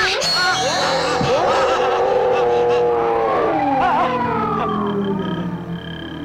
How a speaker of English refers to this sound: Also, I don't think that the other boy did this, but she makes like a weird, like, she makes this creepy howling sound. Should we sample it? Yes. Okay, here it is.